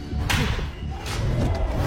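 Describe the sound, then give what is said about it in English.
A sharp, cracking knockout slap at a Power Slap slap-fighting contest lands hard over a steady crowd murmur, followed by a couple of softer smacks and rustling as the noise carries on. “Power slaps over here.”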